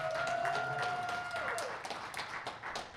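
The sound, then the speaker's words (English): An audience claps for everybody in the room in a steady, dense round of applause for the full three seconds, with a sustained high whistle ringing over the first half before it slides downward and fades. “Can we give a round of applause for everybody in this room?”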